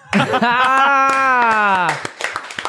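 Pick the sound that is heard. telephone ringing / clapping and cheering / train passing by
clapping and cheering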